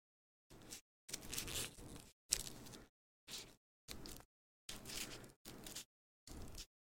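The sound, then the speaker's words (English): Scissors cut through paper in a series of about eight crisp snips and slicing strokes, some short and some drawn out, separated by brief pauses, with no talking. “Oh, I just made a real risky cut.”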